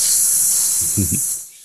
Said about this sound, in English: But then it breaks the oxygen seal of his cockpit, and we can hear not only the alarm, but we can hear the oxygen hissing as it leaves the cockpit.